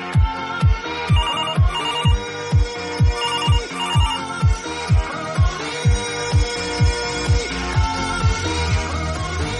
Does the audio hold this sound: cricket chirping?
no